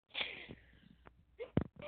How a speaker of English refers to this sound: Oh, here we go again. She's snoring, oh my.